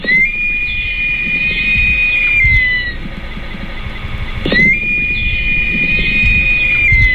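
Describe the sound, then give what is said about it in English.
A great black hawk (Buteogallus urubutinga), a neotropical raptor, gives two long, high, piercing whistled calls, each held steady then dropping away, separated by a short gap, loud over a low background rumble. “That's Butiogallus urubutinga, the great black hawk, a wide-ranging neotropical raptor found from northern Mexico through most of tropical America.”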